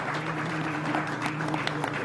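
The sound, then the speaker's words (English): A crowd at a show gives a steady round of applause for three friends up on stage, dense overlapping claps holding an even level for about two seconds over a faint low hum. “Can I have a round of applause for my three longtime best friends up here for coming thank to hang you.”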